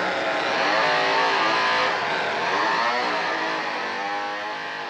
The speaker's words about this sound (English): And then he just goes back to just chopping up old Kirk. Yeah. Starts up the chainsaw.